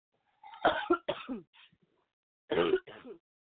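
A close, harsh coughing fit: a quick run of two or three rough coughs, a brief pause, then two more hacking bursts, with no talking.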